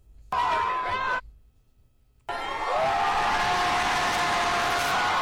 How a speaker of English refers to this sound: Trump entered the stadium. Packed house. Hear that? USA. They're cheering. They're chanting.